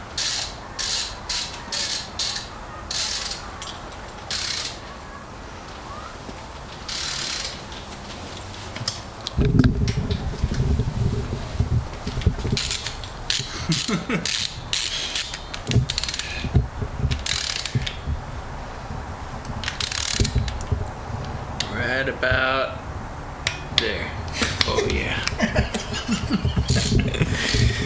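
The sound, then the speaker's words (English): A ratchet wrench clicks in quick, uneven bursts of sharp metallic ticks as a bolt is tightened in a garage at 60 degrees ambient temperature, with a steady low mechanical rumble joining partway through. “Sounds like 75 foot-pounds to me.”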